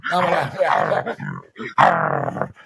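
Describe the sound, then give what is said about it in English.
A person imitates an angry red wolf's growl, a loud, throaty snarl delivered in two rough bursts with a short break between them. “Yeah, the wolf sounds angry.”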